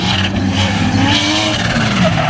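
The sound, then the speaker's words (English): A loud race car engine roars steadily without letup, with a brief thin squeal of tires near the end and no voices. “Sounds like a race car, because it just keeps going.”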